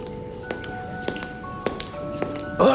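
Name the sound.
knocking on a door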